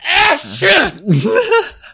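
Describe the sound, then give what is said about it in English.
A loud voice acts out an over-the-top sneeze, with wavering, drawn-out inhales building up before a theatrical burst, all voiced rather than a real sneeze. “Find the nearest elderly person and just blast sneeze on them.”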